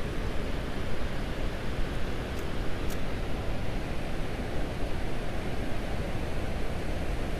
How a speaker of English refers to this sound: Okay, now we got some waves coming in.